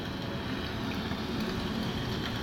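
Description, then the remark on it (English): Steady rain falls outside, a dense, even hiss with a low rumble beneath it that holds at the same level throughout, with no voices or distinct individual drops standing out. “I've been wanting to go out and kind of explore the little woods behind the house, but it's been raining since I got here.”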